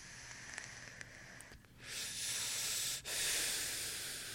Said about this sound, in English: So let's try to focus on not breathing really heavily into the mic.